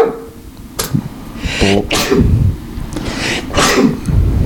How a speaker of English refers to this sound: I gotta sneeze. Huh. Okay. Huh. Hold for sneeze.